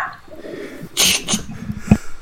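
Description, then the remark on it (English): A puppy named Luna gives a couple of short, sharp yips, followed by a brief lower whine, with quiet room noise around them and no talking. “We have an appearance of Christian's puppy.”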